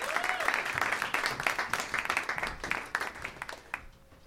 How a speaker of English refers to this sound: Let's give a warm round of applause for your hosts tonight